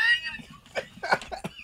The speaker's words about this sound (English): You all right? I'm coughing as … picks up.